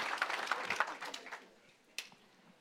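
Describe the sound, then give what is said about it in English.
A seated church audience claps hands in a dense burst of overlapping claps that fades after about a second and a half, leaving faint scattered claps and one sharp clap near the end. “Come on, clap your hands.”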